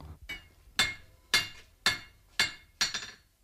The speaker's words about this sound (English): The sound of John Behan, the sculptor, working with hammer and anvil in his Dublin art foundry.